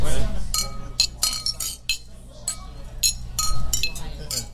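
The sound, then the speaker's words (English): Glasses clink together several times in quick, irregular succession in a toast to Clint Dempsey, bright, each ring briefly sustaining over a low steady background rumble. “I'm gonna raise the glass to Clint. To Clint.”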